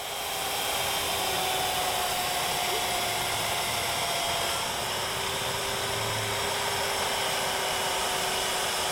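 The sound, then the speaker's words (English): A chainsaw carving an ice sculpture runs steadily for several seconds, a loud, continuous motor whine with a hissing buzz that barely changes in pitch or volume. No one speaks. “You can hear the chainsaw thing going, but then somebody asked a question about how he carved this stuff.”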